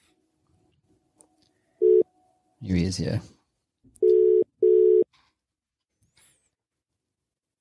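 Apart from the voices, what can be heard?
telephone line tones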